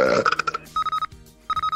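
A loud, rumbling burp lasting about half a second, followed by two quick bursts of short electronic beeps in a rapid, repeated pattern.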